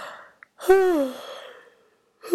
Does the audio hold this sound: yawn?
yes